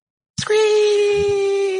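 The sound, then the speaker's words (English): A human voice imitates a fox call: a loud, steady, high-pitched scream-like cry that starts abruptly after a brief silence and holds one flat, buzzy note to the end. “Oh, wait, do you hear that? It was the fox call.”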